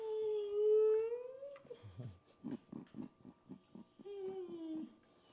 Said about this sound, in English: This is when you put dogs in uncomfortable situations where no harm will come to them, but she will cry like she's being injured.